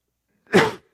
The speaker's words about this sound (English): Really sorry for my cough this morning.